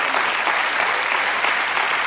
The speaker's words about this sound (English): That's what you did yesterday. This is where you clap. This is where you clap.